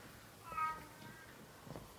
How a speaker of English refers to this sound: You're having a guest appearance, guest star. I know. Of the house cat. Creature of the night. As usual, I think he makes an appearance in every episode.